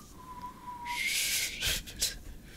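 A failed attempt at whistling: a thin, faint tone wavers briefly, then dissolves into loud, airy breath blown out in a few rushing puffs, with no talking.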